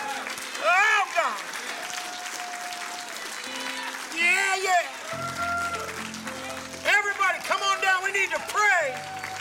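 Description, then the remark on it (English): A church audience applauds people getting saved in a steady, continuous wash of clapping, while voices call out in rising and falling shouts and sustained organ chords swell underneath in the second half. “The saints ought to be applauding right now about people getting saved.”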